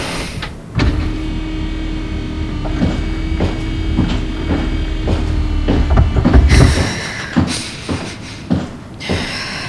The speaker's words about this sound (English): Opening the door.